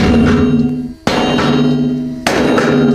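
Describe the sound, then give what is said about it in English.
A huge 7-meter hammer slams into an anvil again and again. Each loud metallic clang rings out with a long, sustained tone before the next heavy blow lands about a second later. “7 meter hammer versus anvil.”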